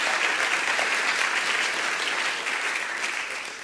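Sustained applause from a large group for the volunteers who did landscaping, a dense wash of clapping that stays steady and loud before tapering slightly at the end.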